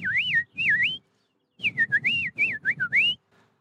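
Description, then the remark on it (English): A person whistles a warbling bird call, calling back to a bird: two short swooping phrases, a pause, then a longer run of rising and falling high whistles over a low rumbling background. “Do you hear that bird? That bird is amazing.”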